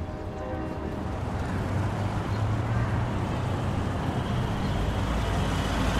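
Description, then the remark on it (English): A steady wash of street traffic rumbles throughout, a constant low roar with a broad hiss on top and no distinct passes standing out, heard through an open window of a second-floor apartment downtown. “You can hear the street traffic when you have your window open.”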